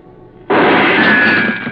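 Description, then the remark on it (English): A single gunshot, fired from near a door, cracks out abruptly after a moment of quiet, its harsh, loud blast lingering as a sustained roar for over a second with no voices. “The shot had come from over near the door.”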